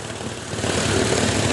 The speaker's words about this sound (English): I'm out here drilling into the ground. Boy, this ground is hard as hell. I ain't gonna stop. I'm gonna keep on drilling.